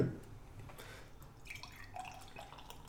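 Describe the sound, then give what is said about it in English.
Ruby ale trickling and fizzing into a glass, with faint dripping and small bubbly pops over a low steady background. Quiet, with no voices. “You know, the next pour, I'm going to hold it really close to the mic so we can just get a little ASMR.”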